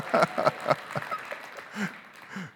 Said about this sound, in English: Yes, give the Lord a hand. These happy clappies are just clapping hands today.